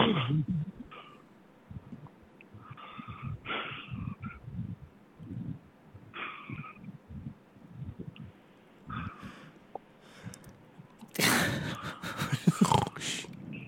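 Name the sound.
person snoring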